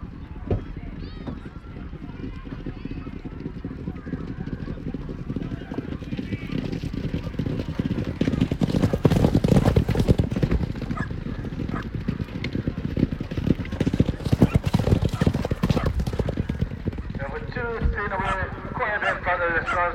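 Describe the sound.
Horse hooves clatter in a busy, uneven rhythm, with a high whinnying neigh rising near the end over a steady murmur of voices in the background.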